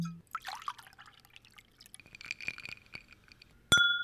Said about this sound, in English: But first, let's pour up some whiskey and get to the whiskey of the week.